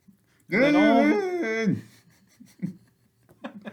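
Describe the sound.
A voice imitates a dog whimpering: one loud, drawn-out whining wail lasting over a second, wavering and then dropping in pitch, followed by quieter breathy murmurs.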